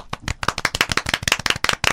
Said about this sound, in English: Okay, perfect. That's live. That's live applause.